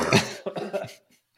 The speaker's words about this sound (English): Hold on. Here comes a cough, and I'm still doing this.